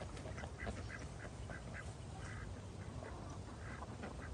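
ducks quacking

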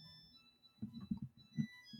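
washing machine end-of-cycle melody

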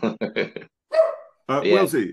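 dog barking

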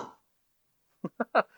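dog barking

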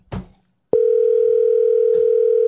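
telephone dial tone

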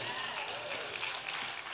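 audience applauding

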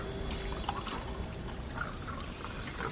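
water being poured

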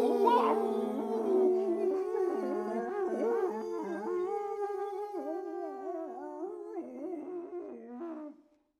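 wolves howling

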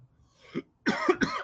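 cough

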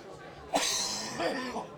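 coughing fit

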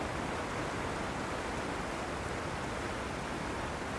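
flowing river water

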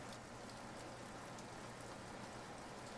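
rain falling

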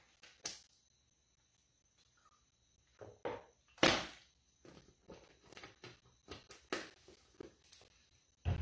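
sipping water

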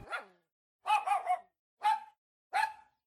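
dogs barking

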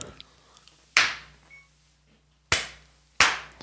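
hand clap

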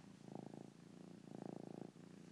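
cat purring

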